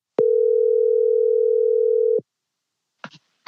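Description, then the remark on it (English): A single phone ringback tone of an outgoing call, one steady electronic hum lasting about two seconds, then silence with a couple of brief clicks at the end. “So together, we phone him up.”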